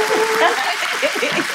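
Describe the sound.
A round of applause from a small crowd: dense, steady clapping that fills the whole short stretch, with a few voices whooping and cheering faintly underneath.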